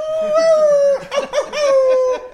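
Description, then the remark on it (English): A person's voice imitates a long wolf howl that dips into a couple of wavering, meow-like bends before stretching back out, all in one loud breath. “Meow and wolf, you know, and all in the same breath.”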